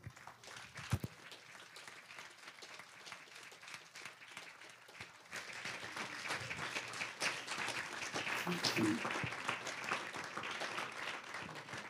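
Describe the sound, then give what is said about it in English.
A standing church audience claps steadily for their pastors throughout, a dense wash of many hands that starts moderately and swells louder in the second half, with faint cheers or voices mixed in near the end. “I would like you all to stand, and if you can face your congregation, let's give a round of applause for our pastors.”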